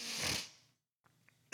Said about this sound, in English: God, sorry. I'm going to be sniffing a lot. My nose has been running a lot.